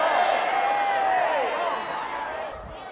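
An audience shouts and cheers for joy together during a sermon in a dense, steady roar. One voice holds a long whooping cry above the crowd before the noise eases slightly near the end.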